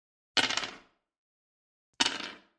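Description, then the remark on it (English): Dice are rolled twice, landing on a three and a two, each a short, bright clatter that rattles briefly and dies away, separated by about a second and a half of silence. Fairly crisp, with no talking. “roll your dice three times and pick your mood based on those three rolls”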